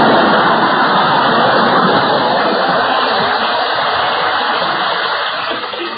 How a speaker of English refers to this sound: Live to see the day Berle gets applause on this program. It must have been a recording someone sneaked in.